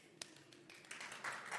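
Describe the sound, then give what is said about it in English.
Sparse, scattered clapping from a handful of audience members at a talk at King's London, clapping to show they came with a given question; faint, with a few separate claps gradually overlapping into a thin patter. “The clapometer means you have to clap if that's your question, okay?”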